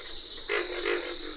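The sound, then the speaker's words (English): Two deep, rough grunts of pig frogs in quick succession rise out of a steady high insect drone in a humid swamp pond in the Okefenokee National Wildlife Refuge, Georgia, with no voices. “Pig frogs make the loudest grunts in this pond in the Okefenokee National Wildlife Refuge in Georgia.”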